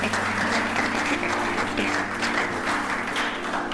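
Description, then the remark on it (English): A crowd claps steadily for several seconds to welcome a visitor, dense overlapping applause that stays fairly loud and even throughout, with faint voices murmuring underneath. “Round of applause, man.”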